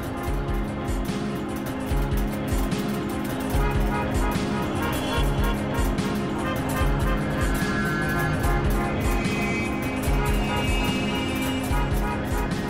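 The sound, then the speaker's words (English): Car horns blare in a dense, overlapping wall of sustained tones, loud and continuous throughout, with no pauses and no voices, as if a whole jam of traffic were honking at once. “So the whole thing is built around like how these car horns can become actually horns, you know.”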